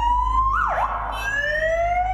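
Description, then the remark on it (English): A loud siren on a police motorbike, being tested by an officer, rises and sweeps in pitch, dipping sharply then climbing again in a steady wail over a low engine rumble, with no one talking. “The officer was on his way to test the sirens on his motorbike, which he did at intervals throughout much of the remainder of the interview.”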